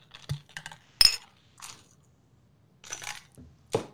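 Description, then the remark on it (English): Several sharp glassy clinks of shot glasses tapped together in a toast before drinking shots ring out at irregular intervals, one brighter chime standing out among softer knocks and rattles. No one speaks. “So we're gonna do the shot first.”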